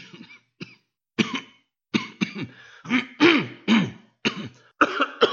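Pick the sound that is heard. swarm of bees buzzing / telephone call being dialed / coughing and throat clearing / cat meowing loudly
coughing and throat clearing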